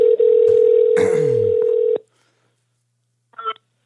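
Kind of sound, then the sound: signal or alarm, telephone dialing and ringing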